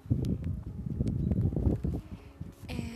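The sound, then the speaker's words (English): Gusty wind rumbles and buffets the microphone in uneven low surges throughout as someone swings on a swing set outdoors on a breezy evening around 9 o'clock, with a faint higher tone appearing briefly near the end. No one speaks. “And I'm down at the swing set, and I'm just swinging, so if you hear the wind, that's because I'm swinging. And it's also a little breezy out”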